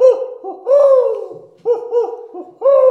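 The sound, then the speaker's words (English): An owl hoots repeatedly, about half a dozen loud, wavering calls in short bursts with brief pauses between them, and no talking. “Did you see that owl?”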